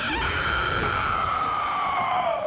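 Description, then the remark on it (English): A black-scaled wyvern with white streaks, raised in an iron cage from a lower deck, lifts its serpentine head and lets out one long, loud shriek into the sky that holds steady for a couple of seconds and slowly sinks in pitch, harsh and piercing, with no talking. “raises its serpentine head and shrieks into the sky”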